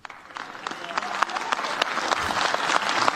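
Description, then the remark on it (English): An audience claps steadily, a dense patter of many hands that swells slightly over a few seconds, with no voices standing out. “In my opinion, the applause should have been a lot greater than it was.”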